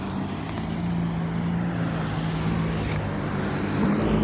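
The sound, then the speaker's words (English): Loud, steady roar of fast cars driving past, a deep engine drone with a humming tone that swells toward the end, with no voices. “Because to see all the fast cars?”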